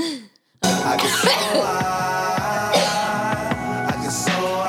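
A person coughs and clears their throat repeatedly, fairly loud, in a series of harsh bursts over a steady droning background, with no talking.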